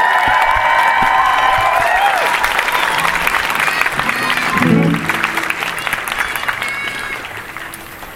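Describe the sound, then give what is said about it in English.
A large crowd at a rally applauds and cheers steadily for several seconds after a speech about Palestine, with high whoops and whistles rising above the dense clapping early on, the noise easing slightly toward the end. “Can we get another round of applause for that speech, please?”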